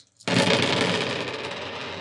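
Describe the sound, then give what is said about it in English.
A sudden, loud clatter of dice rolled for perception checks in a tabletop game, tumbling across a hard table, a dense rattling that carries on for about two seconds with no voices. “Oh, God, they were so loud.”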